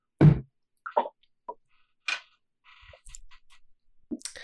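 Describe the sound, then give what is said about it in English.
A sharp knock of a shot glass set down, then a scatter of soft plops, clicks and quiet swallowing sounds as someone drinks a shot, without talk. “I have prepared a shot. Inshallah. John, I know you have got something. Yeah. So cheers to that. Cheers.”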